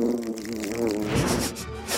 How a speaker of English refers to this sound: I hear a dragonfly.